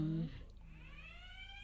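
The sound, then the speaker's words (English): A school bell sounds as a steady, buzzy electronic tone that slowly rises a little in pitch and holds. A brief voice is heard at the very start. “There's the school bell.”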